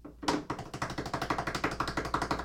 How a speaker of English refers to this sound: I slapped my water bottle for a symbol.